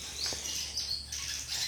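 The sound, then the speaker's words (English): Many wild welcome swallows nesting in a house twitter, chatter and sing loudly in a steady stream of high, rapid chirps that overlap without pause, with a faint low hum underneath and no voices. “I find it really, really interesting that all the birds, so I have wild welcome swallows nesting in my house, and they've all, just so many of them, have suddenly come in and are singing really loudly.”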